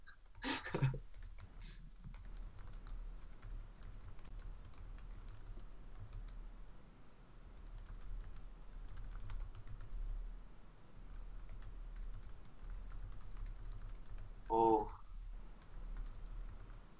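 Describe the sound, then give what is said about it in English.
Continuous rapid clicking of keys on a computer keyboard, irregular and fairly quiet, running the whole time over low background hum, with brief bursts of voice near the start and end. “There's a lot of typing going on.”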